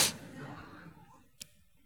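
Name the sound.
sneeze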